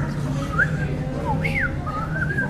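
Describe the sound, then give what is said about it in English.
A person whistles an imitation of the birdsong of a red-breasted whippoorwill: a few short, swooping notes that rise and fall in pitch, followed by a longer wavering trill, over a low, steady background hum. “He put on this album and it's like, the red-breasted whippoorwill.”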